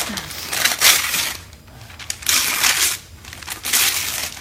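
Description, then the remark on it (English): Wrapping paper rips and crinkles in three loud, scratchy bursts with brief lulls between them as a gift is torn open. No one speaks. “Don't ruin the paper. Well, you can ruin the paper.”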